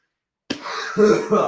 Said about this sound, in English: I'm laughing so much that I'm coughing.